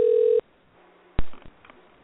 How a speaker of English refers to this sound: We're ringing. I think we're trying to bring in other people.